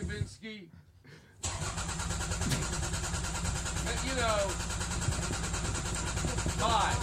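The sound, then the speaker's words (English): A muffled voice briefly, then a car engine cranks and turns over abruptly as a man tries to get the car to work, settling into a loud, continuous rumble with occasional rising whines as it strains to run. “I mean, he's still starting the car, but.”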